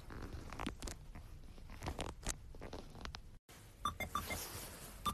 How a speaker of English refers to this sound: Here comes a train, so I'm going to take a little break.